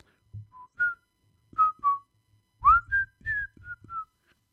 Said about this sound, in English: I'm just going to keep going. Keep whistling.